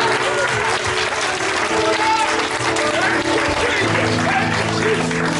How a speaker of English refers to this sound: One more time, can we just give the Lord a hand clap of praise in His place?